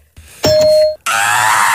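A single bright, bell-like electronic ding rings out loud and close for about half a second, then cuts off and is immediately followed by a burst of loud, harsh noise.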